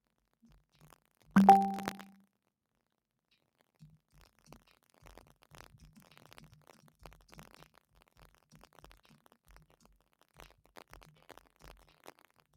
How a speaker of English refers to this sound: Sorry, I'm typing.